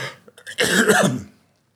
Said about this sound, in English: Oh, I know what I can tell you about in the few minutes that I have left here, but I have to cough and get this phlegm out of my throat.